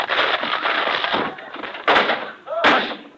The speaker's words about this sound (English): Just a minute, I'll open the door. Never mind, I'll walk through it.